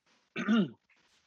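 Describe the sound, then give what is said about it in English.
A single short, throaty cough, rough and voiced like a throat clearing, from a person whose sinuses are troubled by the weather changing from summer to fall, standing alone against a quiet background. “I apologize for coughing.”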